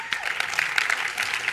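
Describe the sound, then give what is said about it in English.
Scattered, thin applause from a small audience at a live stage show, a handful of hands clapping irregularly at a steady moderate level with no voices. “You could tell by the claps that not too many of you guys have actually listened to the podcast”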